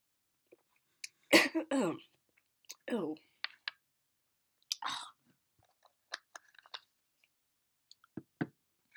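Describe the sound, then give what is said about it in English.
Sounds of someone drinking cough medicine: a sharp cough-like burst, then scattered wet gulps, swallows and small mouth clicks spread across several quiet seconds, with no talking. “Excuse me as I drink this disgusting cough medicine.”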